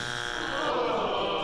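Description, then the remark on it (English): A harsh, steady electronic game show incorrect-answer buzzer, played as a test before a quiz, sounds for about a second and a half, a dense raspy tone holding at an even loudness with no talking over it. “How about the incorrect? Forgot. We hope to not have to use this one very much, but just in case, here it is.”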